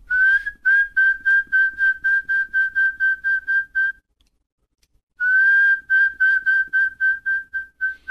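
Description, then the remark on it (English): A person whistles an imitation of a mountain quail call, the same rally call the valley quail uses: a fast run of short, clear, evenly pitched notes, a brief silence, then a second run. The whistling is loud, with no talking. “No, but the mountain quail call is a real simple, usually it's the same rally call that the valley quail uses as, you know, the Chiquita.”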